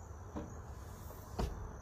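A door being shut: a soft knock followed about a second later by a sharper, louder thud, heard in a quiet room with a faint steady hum and no voices.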